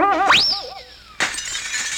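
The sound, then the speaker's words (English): A wobbly whistling tone of a flying arrow slides upward and holds, then the arrow goes through a house window with a sudden loud crash of shattering glass, its bright jangling debris ringing on to the end. “The arrow went right through a window in your house.”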